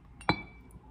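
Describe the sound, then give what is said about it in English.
A single bright clink of glass against glass while another pour of tequila is served, sharp at the strike with a short ringing tail that fades into a faint, quiet background. No one speaks. “I'm gonna get another pour real quick though.”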